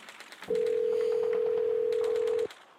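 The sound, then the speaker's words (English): A single steady telephone ringing tone, a low hum lasting about two seconds, loud and clear over faint background clatter, with no one speaking, after a phone number is dialed and the call rings. “Okay, it's ringing.”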